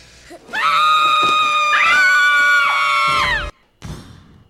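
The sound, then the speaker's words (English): A long, loud, sustained scream from a movie clip rings out for about three seconds with a wavering, strained pitch, cutting off abruptly, followed by a brief rustle. “There's a couple screams in there.”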